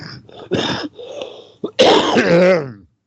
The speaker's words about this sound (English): I was trying to turn that cough into a harumph, but it didn't work.